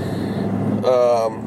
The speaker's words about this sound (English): Sorry. As you could hear, I'm actually driving. I'm always usually in the car.